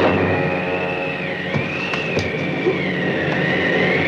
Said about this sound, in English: I hear something. Sounds like a plane.